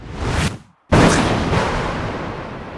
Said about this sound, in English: Jack pulls out his Belgard sphere, and then where the three of us were standing is an explosion of thunder, and we're not there anymore.